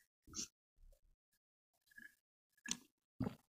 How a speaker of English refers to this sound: Coffee sip.